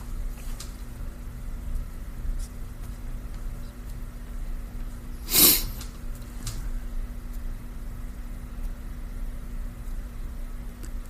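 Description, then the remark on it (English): A single short sniffle breaks an otherwise quiet 10-second moment of silence, over low room hum and faint background noise; no one speaks. “Well, I did a little sniffle in the middle of it.”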